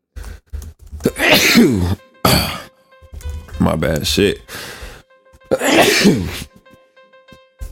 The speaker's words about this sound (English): I feel like I'm about to fucking sneeze. God damn.